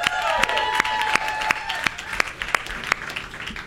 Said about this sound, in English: How about another round of applause for these guys?